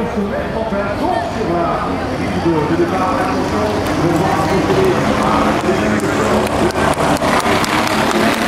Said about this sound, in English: And they release the GTs. Listen to this chorus of beautiful noises. Listen to the Ferrari sing and the Corvettes bark.